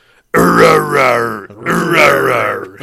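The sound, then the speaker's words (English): A human voice imitates a mountain lion with two long, loud, raspy growls, each about a second, rising and falling in pitch with a brief gap between them. “Oh, look, a mountain lion.”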